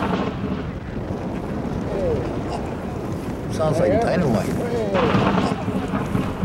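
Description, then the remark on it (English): A deep, continuous rumble of cracking ice rolls on like thunder, swelling louder midway, with brief creaking and groaning tones and faint voices mixed in. “Can you hear the ice cracking over here?”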